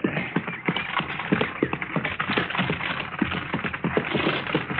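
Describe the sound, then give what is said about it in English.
Steady clip-clopping of horse hooves pulling a buggy, a brisk, uneven trot of sharp knocks over a low rolling rumble of wheels, moderately loud, with no talking. “How do you like riding in a buggy, Matt?”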